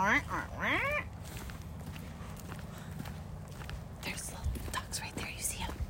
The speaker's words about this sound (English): There's a lot of gooses over there. I can see them all.